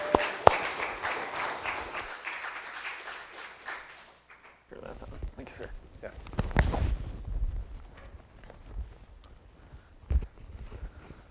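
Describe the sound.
A crowd applauds in the morning to welcome a speaker from Jubilee Home, in a steady, dense patter that fades out after a few seconds. Then comes a brief gap, followed by low rumbling, shuffling and faint voices.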